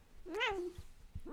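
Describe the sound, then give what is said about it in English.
A cat gives a drawn-out, rising-and-falling meow, then after a short pause starts a second meow that gets cut off at the end. “I'm Sassy. I'm a big fat cat.”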